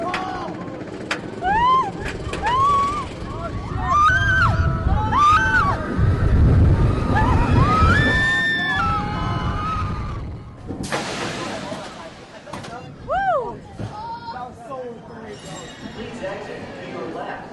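Roller coaster riders on the Superman Ultimate Ride at Great America amusement park scream and whoop in repeated high, swooping wails over a deep rumbling roar, with a sudden burst of rushing noise partway through before more shrieks follow.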